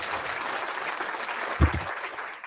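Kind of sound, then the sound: crowd, round of applause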